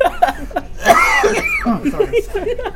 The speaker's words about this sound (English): Oh, yeah, I laugh. When I laugh really hard, I start coughing.